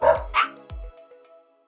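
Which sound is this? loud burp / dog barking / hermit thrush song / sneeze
dog barking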